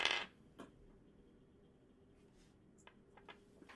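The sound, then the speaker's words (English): Dice rattle onto a hard tabletop, rolled for a survival check in a Dungeons and Dragons game. A sharp initial clatter is followed by a few scattered light clicks as they settle. The sound is fairly quiet, with no voices. “I'd like all four of you to roll me a survival check with advantage.”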